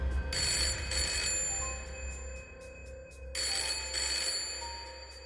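A telephone bell at a club rings in two long bursts separated by a pause, bright and clear over a steady low hum, with no one speaking.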